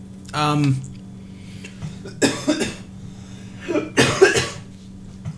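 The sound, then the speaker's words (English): A series of loud coughs: one harsh, voiced cough, then two clusters of rapid hacking coughs a couple of seconds apart, over a faint steady electrical hum. “Try not to cough into the camera.”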